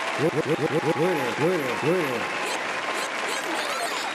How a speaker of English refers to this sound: And also, we are welcoming, because we're going to do another round of applause.